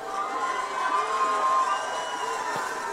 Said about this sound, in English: Okay, so why are they cheering? Because they've already been told that glory equates to having this incredibly emotional experience at an event or in your bedroom or closer something.